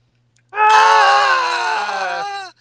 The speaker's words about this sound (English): He is so campy in this movie. Everything he does is punctuated by constant screaming. He screams more than the girls in the movie.